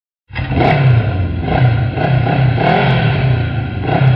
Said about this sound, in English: Hey, it looks like somebody's home. Yeah, on a motorcycle.